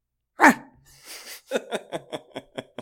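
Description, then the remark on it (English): A person imitates a dog's hunger bark: one sharp, loud yelp, a brief breathy rasp, then a quick run of short, clipped yaps in steady rhythm, unaccompanied. “What does the hunger bark sound like?”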